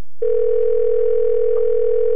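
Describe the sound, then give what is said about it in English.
A steady, unbroken telephone dial tone hums loud, starting abruptly and holding at one pitch for about two seconds with no voices over it, as a call is placed to a man living down the road. “Do you think he'll pick up the phone if we call him right now?”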